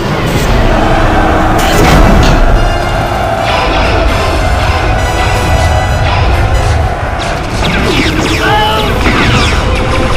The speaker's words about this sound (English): The cargo door opens as Django and his team are met with heavy blaster fire from the insurrection.